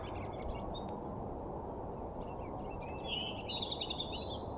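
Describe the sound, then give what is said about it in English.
Birds lined up on a branch sing and chirp over a steady outdoor hiss, with a long thin whistle early on and a brighter burst of quick chirps near the end. “Wow, the birds are serenading us.”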